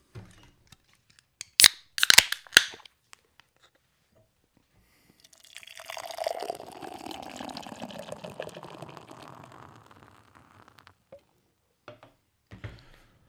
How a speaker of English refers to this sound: Beer's poured out. Yes, sir. It's looking nice and clear. It is. Like an IPA. Looks like a fucking West Coast IPA, dude.